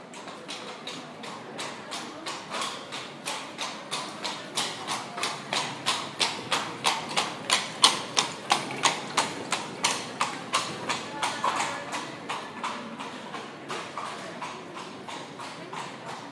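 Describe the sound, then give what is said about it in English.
Horse hooves trot in a steady, even rhythm of sharp clip-clop strikes as a loaded, ridden horse trots off a boat and onto land, fairly loud and continuing throughout over a faint background hiss with no voices. “Kenji loaded down his horse and mounted. They then trotted off the boat and on to land.”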